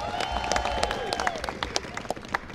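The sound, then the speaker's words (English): A large audience claps steadily for Buffalo Bills player Steve Tasker, a dense wash of overlapping hand claps with a few sharper individual claps standing out, tapering slightly toward the end. “Let's give Steve Tasker another great big round of applause.”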